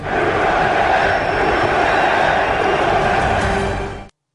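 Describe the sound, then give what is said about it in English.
A huge stadium crowd at a World Series baseball game with the Yankees playing roars and cheers as George W. Bush throws out the first pitch, a steady, loud wall of sound that holds for about four seconds before cutting off abruptly, with no clear voices standing out. “Bush throwing out the first pitch at the World Series.”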